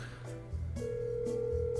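An outgoing phone call rings through the line: steady electronic tones with a regular pulsing rhythm, fairly loud, with no one speaking.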